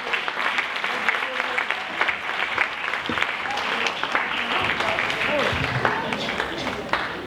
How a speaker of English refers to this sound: A round of applause, ladies and gentlemen.